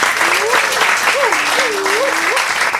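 An audience claps steadily and loudly for the full few seconds for a volunteer from the audience at a show, a dense wash of hands, with a wavering, rising-and-falling tone running faintly over the applause.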